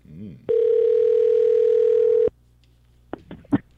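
A steady, continuous telephone dial tone of an outgoing call hums loudly for about two seconds, then cuts off abruptly, followed by a few brief, faint sounds like voices or clicks on the line.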